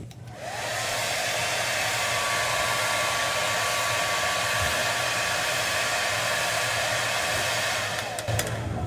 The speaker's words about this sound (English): This hair dryer will represent what happens when we ask for God's help with our problems.